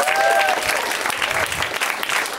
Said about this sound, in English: Thanks, you guys, for that just applause that you did on your own. I appreciate that so much. Give it up for yourselves for coming out to put your hands together tonight.